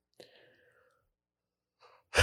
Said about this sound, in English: I got a yawn working here. I'm sorry.